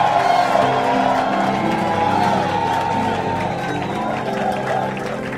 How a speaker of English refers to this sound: Who is shouting a loud amen in the church? And clap your hands and make a joyful noise unto the Most High God.